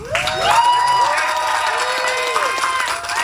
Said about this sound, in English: So let's please join me in giving a huge round of applause to the promotores who are here with us today.